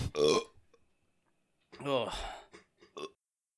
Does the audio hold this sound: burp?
yes